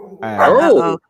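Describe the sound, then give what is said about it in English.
A dog named Pablo lets out a single loud, drawn-out bark, rising and falling in pitch like a yelping howl, ending abruptly into silence. “Did you put your pooch away? But you know, that's not me barking.”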